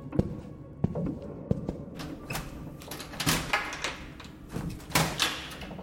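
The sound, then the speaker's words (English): Clicks and a rattle as the knob of an oversized, heavy wooden door is turned, followed by the thumping, creaking sounds of the unlocked door being opened. No one speaks. “walked over to the oversized wooden door and turned the knob.”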